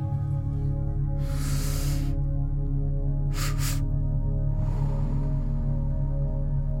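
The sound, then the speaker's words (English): Loud, airy breaths of a breathing exercise over a steady low hum: a super deep drawn-in inhale, a brief sharper puff, then a long, slow exhale that gradually fades away. No one speaks. “I'm just going super deep inhalation. Hold it. Super deep and slow exhalation.”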